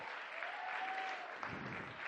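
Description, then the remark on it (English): A church audience claps steadily for a participant, a dense wash of many hands sustained for about two seconds at a fairly even, moderate level, with no voices standing out. “Give him a clap.”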